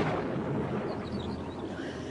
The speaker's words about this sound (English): It's time to go back. The storm is coming this way.